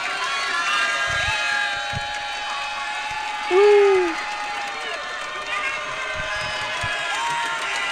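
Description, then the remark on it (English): A dense crowd at a minor league baseball game roars and cheers continuously, with scattered shouts and whistles rising above the din and a louder cry standing out midway through. “There was a ton of crowd noise at the game I was at. Take a listen.”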